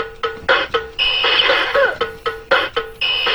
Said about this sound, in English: And then we have the iconic alarm clock that has forever been embedded in my brain.